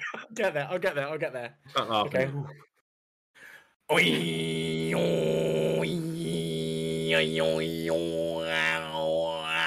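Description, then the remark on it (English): A person attempts Tuvan throat singing with the microphone moved away: after a few short voiced sounds, a loud, steady low drone begins, with shifting whistle-like overtones gliding above it for several seconds. “Do Toven throat singing.”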